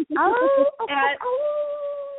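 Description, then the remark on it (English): A person imitates a howl with their voice: a couple of short, wavering vocal bursts with a brief break, then a long, steady tone held at an even pitch until the end. “But now I have to howl back.”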